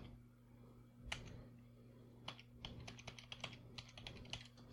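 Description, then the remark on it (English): Keys clack on a computer keyboard while setting up a livestream: one sharp press, a short pause, then a quick irregular burst of taps over a steady low electrical hum. Fairly quiet, with no one speaking. “Oh, it's not typing anything.”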